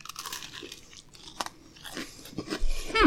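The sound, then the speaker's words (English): Crunching and chewing of CCC cream sandwich biscuits from an assorted pack of four flavors, fresh out of the microwave, a run of crisp, irregular bites and munching that grows louder toward the end, with no talking. “If you just keep putting these in my hand, I'm going to keep eating them, whether they're frozen, microwaved, or”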